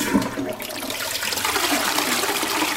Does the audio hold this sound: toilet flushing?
yes